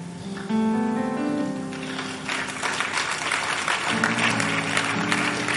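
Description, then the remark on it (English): An audience claps steadily and loudly over sustained music with held tones; the clapping swells in after a couple of seconds and continues as a dense, crackling wash to the end. “As you are clapping, something is happening to you right now.”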